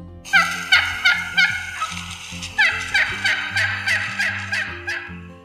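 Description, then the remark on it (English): A wild turkey hen yelps in two close, loud runs of rhythmic, raspy notes, about five then about seven, with a low steady tonal backing beneath. “And the hens also have many calls, such as the yelp.”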